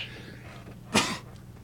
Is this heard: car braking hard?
no